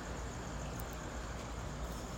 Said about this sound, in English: Listening to the traffic in the near distance is almost like listening to the surf, Baja California, San Felipe, Baja Norte.